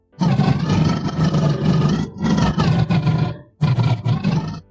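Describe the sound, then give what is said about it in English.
A voice imitates a Hodag with three long, loud, rumbling growls, low-pitched and gravelly, meant as happy growls, each lasting over a second and separated by brief pauses. “Yeah, see, those are happy growls.”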